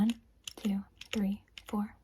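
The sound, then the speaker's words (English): Four evenly spaced key presses on a small keyboard, fairly quiet, each a sharp click followed by a short low hum, with brief pauses between them. “Now I've got my little keyboard here, okay?”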